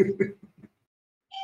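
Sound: doorbell ringing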